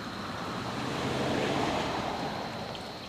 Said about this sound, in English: Pickup truck. Yeah. So. Hot rod. The SUV. We're outside, so all the dingleberries are driving past our house now late at night. It's a convoy. It's a convoy of crazies.